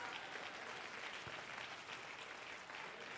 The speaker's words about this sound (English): If you believe it, would you clap your hands to the Lord?